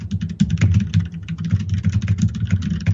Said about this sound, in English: This new DOS keyboard, I'm going to tell you right now, I'm going to type a little bit.